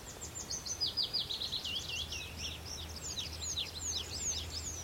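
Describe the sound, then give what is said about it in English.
Tree pipits singing among willow warblers in sunlit oak and ash trees, their rapid trills and descending phrases overlapping in a continuous outdoor chorus over a low steady rumble. “They're getting blended in with the willow warblers.”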